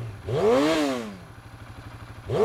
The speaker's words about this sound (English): I think you'd better hit the button. It's gonna get loud when she starts her motorcycle.